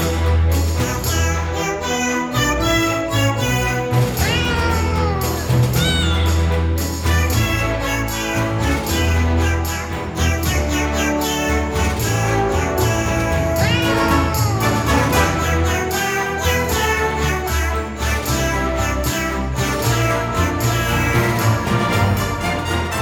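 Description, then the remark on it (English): A dense, steady music track from a soundtrack, with bass and percussion, layered with pitched, swooping cat-meow sounds used as melodic notes throughout, with no talking. “Like it's a meow track, but I'm also like, I you know, I'm a music geek.”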